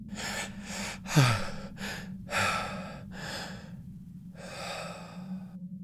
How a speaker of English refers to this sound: Then, her breathing slows down. She takes in a long, deep breath.